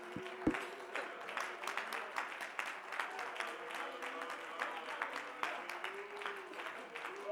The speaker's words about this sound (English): Why don't we clap our hands to the Lord before we begin? Let's glorify the Lord of glory.